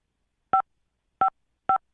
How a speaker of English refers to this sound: I'm hitting five on the phone.